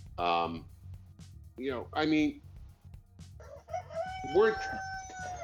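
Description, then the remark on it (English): A rooster on a live working farm crows in a few loud, strained bursts, finishing with a longer drawn-out cock-a-doodle-doo over a low steady background hum. “And once your rooster calms down,”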